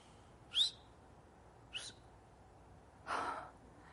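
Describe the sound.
Someone whistles a bird-song imitation: a quick rising chirp, a shorter second chirp, then a longer breathy whistle, each spaced apart and fairly faint, with no talking.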